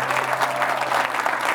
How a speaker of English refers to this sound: And I want you to give them the biggest cheer and the biggest round of applause. You know how to do it.